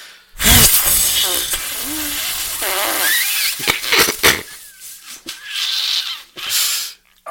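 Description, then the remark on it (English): A big, forceful puff of breath blown at a candle without blowing it out, a loud rushing burst of air lasting several seconds with faint voiced tones mixed in, then a shorter, softer second blow. “he didn't blow it out with that massive puff.”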